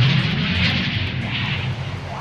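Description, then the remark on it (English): A loud, steady roar of military airplanes overhead at night amid bombing, with a deep low rumble beneath a broad hiss that holds constant. “It's me getting out of my window, there is planes and bombs, and it's at the night”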